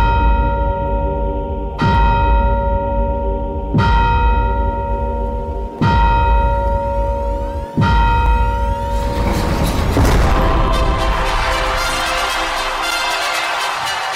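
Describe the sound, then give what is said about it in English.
Five loud, resonant bell strikes ring out about two seconds apart, each leaving a long humming overtone, before the sound swells into a denser, clanging wash of ringing with no voices. “At the sounding of the five bells, we open the Time Game Hall of Fame.”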